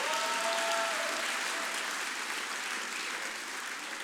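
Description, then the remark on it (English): An audience breaks into dense, steady applause, many hands clapping together in a loud, even wash that holds for about four seconds and eases slightly toward the end, with a faint voice briefly audible at the start. “If you can't clap hands, you're a suspect.”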